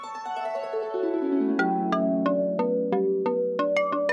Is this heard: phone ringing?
yes